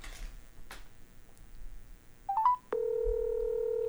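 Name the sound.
telephone keypad dialing tones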